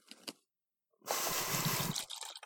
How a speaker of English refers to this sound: I'm pouring some more wine. Yes, please.